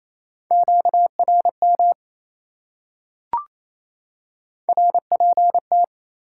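Fast Morse code beeps at 28 words per minute in a steady mid-pitched tone, sent in two bursts of quick dots and dashes separated by a pause with a single sharp click, clear and alone.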